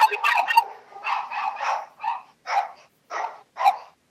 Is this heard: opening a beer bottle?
no